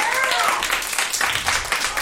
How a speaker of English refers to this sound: And three, I really need this show to work out, so I'm going to need you guys to start clapping right now.